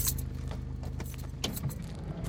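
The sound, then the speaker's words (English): The engine of a crew's truck, about 200 meters away at a site being prepared for an explosion, runs with a steady, deep rumble for the whole stretch. A few brief metallic clinks and rattles sound over it, and no one speaks. “You can hear their truck now.”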